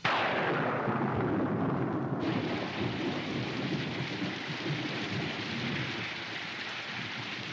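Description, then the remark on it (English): A loud thunderstorm with a heavy, steady downpour, a deep rumble of thunder rolling through the first couple of seconds as the rain hisses on without pause. “And then it's just then a downpour.”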